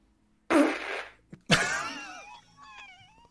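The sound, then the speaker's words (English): Two loud farts in quick succession: a short, breathy blast, then a longer squeaky one whose pitch wobbles and slides downward before trailing off. No one speaks. “Gotta fart so hard.”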